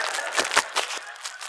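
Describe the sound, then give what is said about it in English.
Crinkling plastic packaging, a little plastic bag, being handled and pulled open, a dense, steady crackle with several sharper crackly bursts spaced irregularly throughout, moderately loud, with no talking. “Why does it take so long to open this little plastic?”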